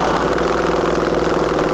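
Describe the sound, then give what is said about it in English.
A kick-started motorcycle engine idles with a steady, loud, rhythmic throb and rumble that holds evenly throughout, with no voices. “The guy kicked the ignition, and the engine caught with a little so much smoke, I thought the damn thing blew up.”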